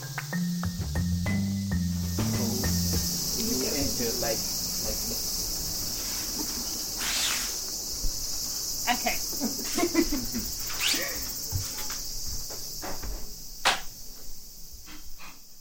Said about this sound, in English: Right now, you find me on a Tokyo balcony, cicadas screeching away, and I'm about to enter a very peaceful space.